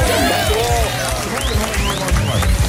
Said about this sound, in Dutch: dit applaus is voor jou!